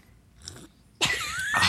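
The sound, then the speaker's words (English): A loud slurp of a sip of wine: an abrupt airy sucking rush with a thin whistling edge, running to the end, after a brief faint mouth sound. “He had his pinky up when he was slurping.”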